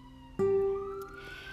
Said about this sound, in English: There's another siren.